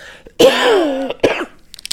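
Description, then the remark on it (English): A loud cough from someone getting over a cold, with a long raspy tail, quickly followed by a shorter second cough and a few faint throat sounds at the end. No one speaks. “Sorry for my coughing, I'm still getting over a cold.”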